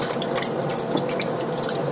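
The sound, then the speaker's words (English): A steady stream of near-boiling water pours into a metal roasting pan, a continuous splashing rush with faint droplet splatters, heard alone without any talking. “Pouring it into this”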